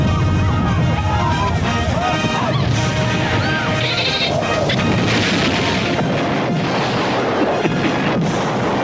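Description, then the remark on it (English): Loud, continuous fireworks, booms and crackles layered densely over music playing underneath, forming a busy wall of sound with no talking. “Wait, it's time for more fireworks and yes, music.”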